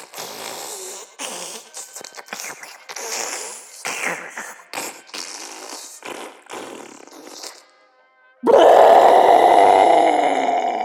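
After some choppy, gurgling vocal noises and a brief pause, one enormous, loud burp erupts up close and rumbles on for a couple of seconds.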